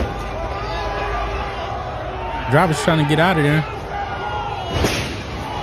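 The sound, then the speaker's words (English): A noisy outdoor crowd with scattered dull thumps and bangs as people knock on a Tesla sedan in the 200 block of North Lower Columbus Drive, while a man speaks over the din and a warbling vocal tone rises briefly. “And they're just knocking on it, knocking on the Tesla right there.”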